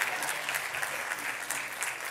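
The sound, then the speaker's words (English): An audience applauds steadily in praise of God for his word, a dense, sustained patter of many hands clapping at an even loudness with no voices standing out. “You're not applauding my preaching. You're applauding his word.”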